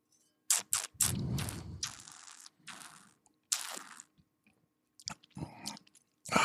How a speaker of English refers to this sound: And I'm going to take a sip because I got a glass of Sauvignon Blanc in my hand and I've been talking for 4.5 minutes.